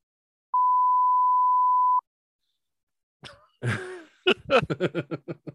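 A single steady, high-pitched censor bleep holds for about a second and a half, then after a pause a voice quickly imitates a string of beeps, about eight in a row.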